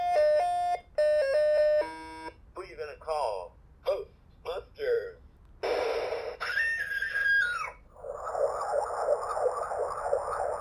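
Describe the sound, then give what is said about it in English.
Tinny electronic sounds from a Ghostbusters talking electronic board game: a quick run of melodic beeps, then warbling synthesized chirps, a short siren-like rising and falling tone meant to be the Ecto 1, and finally a harsh buzzing electronic noise. “Meant to be Ecto 1. How is that Ecto 1? Because the siren, but they didn't have the siren.”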